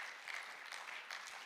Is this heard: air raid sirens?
no